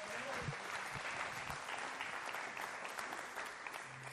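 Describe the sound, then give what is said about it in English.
A large group claps steadily in sustained applause for the kids, dense and continuous, with a few faint cheers or voices mixed into the wash of hand claps. “Give our kids a hand.”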